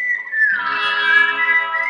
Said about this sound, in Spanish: No, pues ahí un pito, le metiste un eco ahí brutal y suena... No, suena a otro nivel.